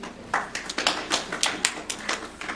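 A short round of applause from a small group at a board meeting, for the chief financial officer after a budget update, with overlapping hand claps in an uneven, crackly patter at moderate volume and no voices.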